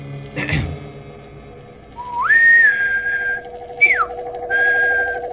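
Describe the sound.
A person whistles an imitation bird call to distract a guard: a long rising-then-held note, a quick falling chirp, and another sustained tone, over a steady low background hum.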